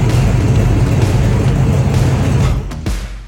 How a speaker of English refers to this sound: those car sounds were courtesy of podcast listener Cameron. He sent those car sounds in.